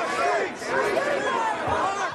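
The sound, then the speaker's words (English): A large crowd of protesters in Seattle fills the street amid clashes with police, steady, loud overlapping voices and shouts, a dense roar of many people yelling at once with no single voice standing out; police hold the protesters' line back some 30 to 60 feet away. “Police are not 30 feet away, maybe 60, keeping the line of protesters back.”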